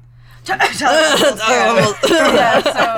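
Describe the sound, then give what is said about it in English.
Several people cough and sputter in loud, overlapping bursts over about three seconds, with a faint low hum underneath. “Why is everyone coughing?”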